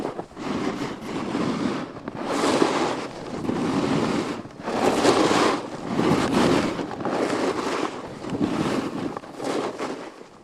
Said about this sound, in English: That's how good the Four States pop filter, along with a foam and woolen sock, worked. I hadn't planned to record a complicated soundscape of the mountain, but simply the sound of the snowboard going down the mountain.